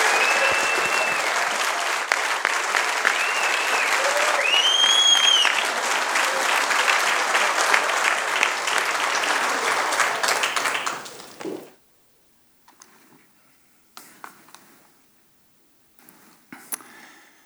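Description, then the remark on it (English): A large audience applauds the graduates steadily for about eleven seconds, dense clapping filling the room with a few whoops rising above it, then it cuts off into near silence with only faint stray noises. “Let's give one more round of applause for our graduates.”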